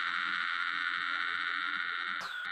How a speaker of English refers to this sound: Your audio just went crazy. My audio? I didn't even say anything. When you unmuted, it sounded like you had a cicada sitting on your microphone.